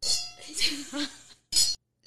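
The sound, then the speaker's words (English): Several wine glasses clink together in a toast among girls at the start of a Never Have I Ever drinking game, in quick, bright rings, with three or so short chimes mixed in among overlapping voices and laughter-like chatter. “We all have our wine. Cheers, girls.”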